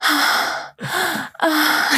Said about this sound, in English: that when we're high, we'll be like breathing into the mic, like, so we're being more conscious of that too. And we tried to get that ad shot, wait a little while, like be more conscious of the baked breathing. Wait, can you do that breathing again?